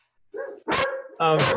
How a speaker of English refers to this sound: So in this, I think I hear a goldfish in the background there barking. Yeah, I was going to say, I think you're going to hear my dog. Dang it.